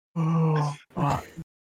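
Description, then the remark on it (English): A person fakes a yawn: a drawn-out, groaning vocal stretch, a brief pause, then a shorter sighing moan that trails off. “Oh, you got to stand up and yawn like you meant to do it.”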